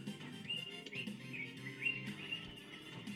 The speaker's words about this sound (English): Got some bird song there. Yeah, is this like a bird sanctuary?